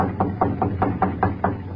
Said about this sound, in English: I'll knock on the kitchen door. The shades are up, but I don't see nobody. Well, I'll try again.